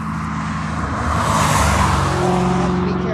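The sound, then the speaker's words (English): A car drives past on a road where volunteers pick up crossing newts in Petaluma, its engine and tire roar swelling loudly in the middle and then easing off slightly, steady rushing noise throughout. “dodging enemy number one of newts, cars.”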